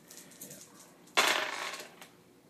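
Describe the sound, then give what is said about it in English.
A sudden burst of clattering as six dice, rolled for damage in a tabletop game, tumble across a hard table, rattling for under a second before a final click; fairly loud, with no talking. “Okay, so now you're rolling 6 dice for damage.”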